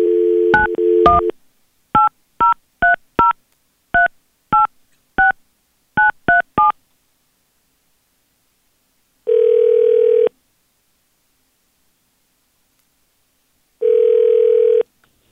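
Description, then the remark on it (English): A brief dial tone gives way to a quick run of about eleven touch-tone keypad beeps, followed by two long, steady ring tones separated by silence, as a phone call is placed live on B93.7 radio. No one speaks. “We're going to call him, and you just sit back, listen in, and we'll find out what happened and why he's not calling you back.”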